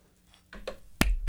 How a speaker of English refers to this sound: That's a golf clap, baby.